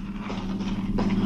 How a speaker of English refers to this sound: An automobile, but how? There's no road. Oh, this car's special built. Doesn't need roads.